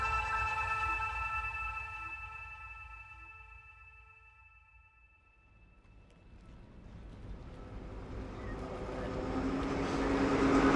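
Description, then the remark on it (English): The engine of a vaporetto, a water bus in Venice, drones with a steady low rumble and humming tones, eases off briefly, then swells back into a louder, churning roar of engine and rushing water. No one speaks. “I'm on a vaporetto, which means water bus, in Venice.”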